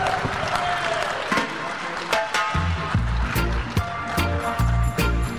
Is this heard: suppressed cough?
no